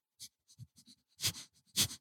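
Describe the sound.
A person imitates a dog with a quick run of short, breathy panting and snuffling bursts, two of them louder and harsher, with no words spoken.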